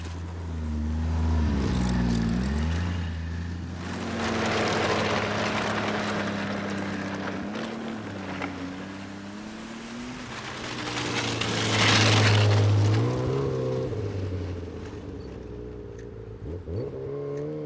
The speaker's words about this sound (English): These are snowmobiles. Hundreds of them sharing roads with cars and sidewalks with pedestrians.